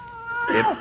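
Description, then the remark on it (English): A single drawn-out meow from a cat named Aesop, fairly loud, rising then falling in pitch over under a second, with no voices around it. “I like cats. I find that cats generally like me, too.”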